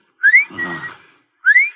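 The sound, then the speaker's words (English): A person whistles in imitation of the bird that jumps out of a clock to tell the time: two bright, rising whistled notes about a second apart, clear, with a soft breathy rustle between them. “My father had a clock that told the time with a bird jumping out. The bird whistled, like this.”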